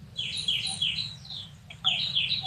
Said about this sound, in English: I'm hearing a parakeet again. No, it's the bird behind me. Sorry for that. It's day here, na? So they just woke up.